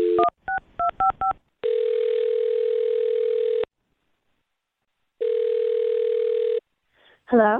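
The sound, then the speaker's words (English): A quick run of about seven touch-tone keypad beeps dials a number, then two long, steady ringback tones sound with a pause between them, and a voice briefly starts at the very end. “I'll dial the phone number right now.”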